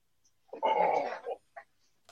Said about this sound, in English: I was just queuing it up, but then the dog came in. And the dog needs hugs when it thunders.